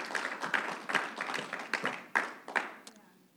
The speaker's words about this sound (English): Let's clap. Let's celebrate. Let's get behind the word of God this morning.